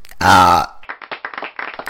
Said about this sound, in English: I cannot stop burping.